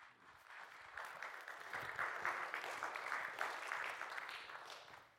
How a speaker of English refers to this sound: I think only those of you who are my students clapped for an increased grade.